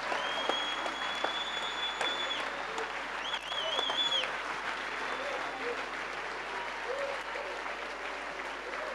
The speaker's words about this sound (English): Clap your hands. Clap your hands, clap your hands, clap your hands.